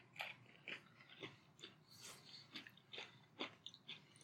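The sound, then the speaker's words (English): Chewing on a stale Oreo sandwich cookie, a little less crunchy than fresh, a soft muffled crunch repeating in a steady rhythm about twice a second, with no talking. “Cream tastes fine, though. And honestly, it's stale in a way I don't mind. It's just, like, a little bit less crunchy.”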